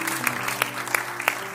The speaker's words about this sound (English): Let's just give the Lord a hand clap of praise.